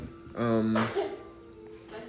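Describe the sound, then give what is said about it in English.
A single sneeze from a man: a short voiced intake rising into a sharp, breathy burst, followed by quiet background sound. “Bless you. He's so cute when he sneezes.”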